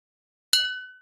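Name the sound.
glass clinking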